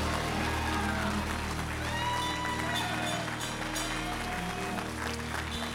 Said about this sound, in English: this is going to be the last clap I'm going to give for him right now, because I just want to hear it one time myself.